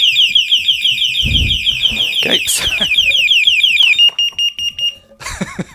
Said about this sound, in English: I've also got a very loud sounder that comes as an extra for the system.